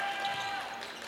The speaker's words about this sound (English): Crowd cheering a little bit of defense here.